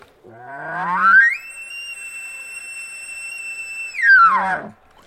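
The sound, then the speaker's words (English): A single elk bugle blown on a diaphragm call through a bugle tube: a low raspy growl climbs to a long, steady high whistle, then drops back to a guttural grunt. Loud and alone. “I mean, just a diaphragm alone with a bugle. That's not a very, I mean, it sounds more like a wounded coyote call.”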